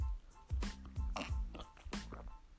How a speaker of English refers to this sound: You know, I take a little bit of that, you know. I take a sip of that Arabica. You know? Hey man, coffee is life, bro.